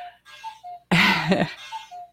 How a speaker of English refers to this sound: There it is. It's off by a few minutes. I've got to adjust it again. The cuckoo clock. It got the one of the weights bumped a table and got sideways, so it stopped moving, and so the clock kind of froze up.